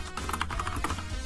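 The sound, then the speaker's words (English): Rapid computer keyboard typing of a quick message, a steady flurry of small clicking keystrokes, with a low hum underneath and no voices. “So let's just send a quick message, and of course we got the lovely sound of my keyboard typing, because that is a running meme in this show.”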